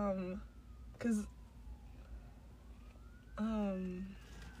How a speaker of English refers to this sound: Oh my gosh, where's the sirens? It's so far away. Okay. Why is it so loud?